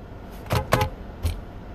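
Quiet enclosed interior of a parked car with a low steady rumble, broken by three short rustling clicks, like keys or hands moving around the cabin. No one speaks.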